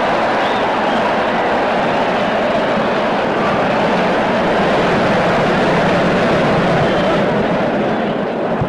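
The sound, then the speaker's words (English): A Chicago stadium crowd roars after Ray Prim strikes out Detroit's Greenberg, a loud, dense wall of cheering that holds steady for the whole stretch without fading. “And of course, that was a deafening roar from the Chicago crowd.”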